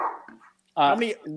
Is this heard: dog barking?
yes